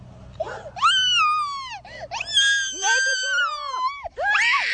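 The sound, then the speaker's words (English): A little boy on a slide shrieks in terror as a frog jumps from his arm onto his face, a series of long, high-pitched wailing screams with brief gasping breaths between them, loud and strained, rising and falling in pitch. “The frog then jumps from his arm straight onto his face and just terrifies him.”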